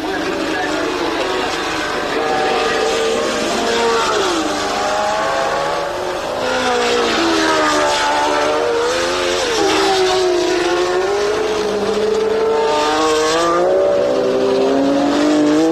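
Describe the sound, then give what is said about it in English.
Racing cars speed around the Francorchamps road circuit in the Belgian Ardennes, engines roaring loudly and continuously, pitch rising and falling as cars accelerate, change gear and sweep past one after another, with Rindt, Stewart and Amon chasing Clark's Lotus at the front. “Gearbox trouble for Graham Hill, but the pace is still hot at the front, with Rindt, Stewart, and Amon after Clark Lotus.”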